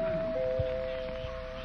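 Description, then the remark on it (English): Mrs. Pettibone's doorbell is rung nervously, a steady, unbroken mid-pitched buzzing tone that holds for the full length, over a faint hiss and a few low thumps. “Pettibone's doorbell in a last-minute attempt to avert a civil war in the hat shop this afternoon.”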